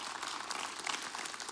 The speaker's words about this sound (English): Keep clapping. This is amazing.